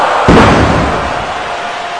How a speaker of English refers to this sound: grabbed him by the back of the neck and slammed him with an inverted face-first choke slam into the glass!